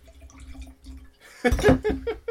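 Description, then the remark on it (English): Riesling wine glugs and splashes into a glass, starting after a quiet pause and swelling into a lively, bubbling pour for about a second. No one speaks. “And again, as we pour this into the glass, the Riesling character is really pronounced.”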